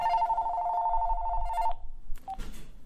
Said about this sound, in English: As we continued eating, the phone rang.